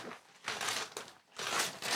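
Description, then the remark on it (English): Thick wrapping paper crinkles and tears in bursts, fairly loud, with brief pauses between each rustling pull as a joint gift, an oil painting, is unwrapped. “Oh, it's a good thick paper.”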